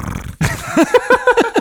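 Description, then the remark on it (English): A person imitates a tiger with a string of short, rough growling roars, about six throaty bursts in quick succession, loud and close to the mic. “Do you speak Tiger?”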